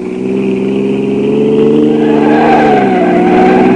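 A car engine revs hard and loud, its pitch climbing and wavering as the vehicle speeds and takes a corner on two wheels, with no voices over the steady roar.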